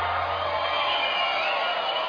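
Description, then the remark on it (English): A steady, dense roar of a cheering crowd from the video game Guitar Hero holds at an even, fairly loud level throughout, with no distinct voices or pauses. “Video crowd. They love us.”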